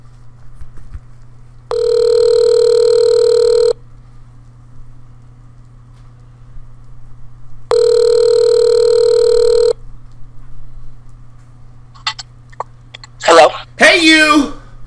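Two long ringback tones on a phone line as a radio host calls a guest for TDP Pirate Radio, each about two seconds with a pause between, steady and harmonic over a low hum, followed by brief clicks and a burst of noisy pickup sounds.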